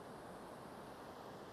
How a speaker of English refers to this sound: Standing here on this beautiful beach with the sounds of the waves crashing in the background, I'll go through them.